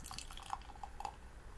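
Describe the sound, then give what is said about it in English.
Unfiltered pilsner beer pours into a glass with a quiet, steady trickle broken by small splashy gurgles and bubbling blips, with no one speaking. “I'm gonna pop my top. Ooh. Oh, my top. And the pour.”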